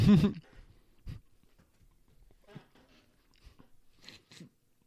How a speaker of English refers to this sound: I did. I ate it. We're going to be chewing for a second for did this one.